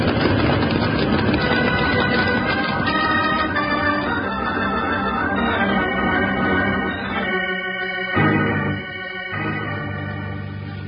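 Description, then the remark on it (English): A flash flood roars down a canyon in a loud, continuous rumbling rush of water that holds steady, then thins and surges again in the last few seconds. No one speaks. “Water. A flash flood. Coming down this canyon?”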